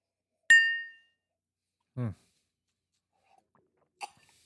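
A single bright clink of glasses of bourbon in a toast rings out with a clear, high tone that fades within about half a second, followed by a brief low vocal murmur and a soft tap.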